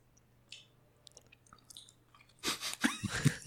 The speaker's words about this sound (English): Do your eyebrows have to be that raised when you eat?